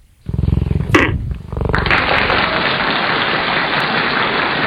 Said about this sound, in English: What animal do you think actually purrs like that? Big cat. Cheetah.